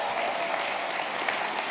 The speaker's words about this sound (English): You guys were more appreciative than last night. Applause was better. I appreciate it.